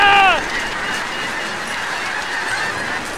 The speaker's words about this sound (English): That huge flock of geese!